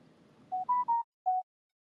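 A quick run of four short electronic text-message notification beeps from a phone, the first three close together and the last after a brief pause, over a faint low murmur that fades out.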